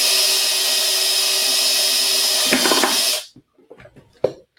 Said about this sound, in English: So, right. We're just going to drill a hole here.